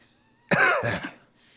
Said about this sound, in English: Stop that coughing!